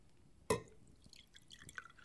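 A single sharp clink of glass, then a short, quiet trickle of water being poured into a glass, with small splashing drips. No one speaks.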